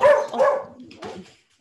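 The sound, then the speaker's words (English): An Australian cattle dog lets out two loud barks, the first longer and more drawn out, the second shorter, with no voices around them. “Oh, what kind of dog? Australian cattle dog.”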